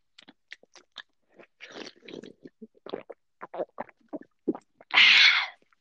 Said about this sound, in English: We can hear you swallowing. Oh god. Sorry, do you not enjoy my swallowing?